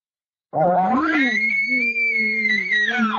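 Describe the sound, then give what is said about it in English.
A person's voice imitates a bull elk's short challenge scream: one loud, continuous call that starts low and raspy, climbs into a high, strained squeal, holds steady for a couple of seconds, then cuts off. “He's going to scream. You know, he's going to come to give me something like this.”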